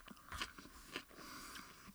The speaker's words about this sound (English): And let's get into another topic here as I take my second bite of the onion. God.